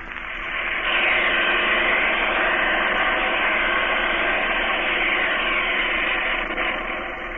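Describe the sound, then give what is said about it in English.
A steady, unbroken drone of an airplane engine in flight from New York to Black Rock, 25 miles off the coast, late in the day, a dense rushing roar that holds an even loudness throughout with no voices. “I hope we reach it before it gets too dark to land the plane.”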